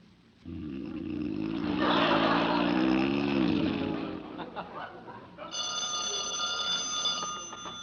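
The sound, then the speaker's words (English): Loud, rumbling snoring fills the first few seconds, then a telephone starts ringing with a bright, sustained, tinny bell tone that carries on steadily to the end. “Where is that darn phone?”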